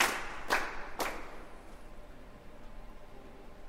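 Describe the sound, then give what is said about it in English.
At the traditional beginning of an opera, the orchestra and chorus clap together in a specific steady rhythm: three crisp, evenly spaced unison claps about half a second apart, followed by a low, quiet hiss with no further claps. “And then through this applause that start to faint, the orchestra and the chorus start to applaud in a specific rhythm.”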